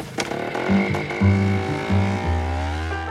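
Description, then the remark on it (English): A homemade dune buggy's engine runs loud, its low rumbling drone stepping up and down in pitch as it revs and shifts while driving over bumpy ground, with no one speaking. “It's fitting that Peter's going to interview Howard Hawks in his homemade dune buggy.”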